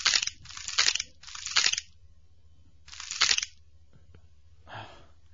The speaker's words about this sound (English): Just chewing. His little teeth grinding.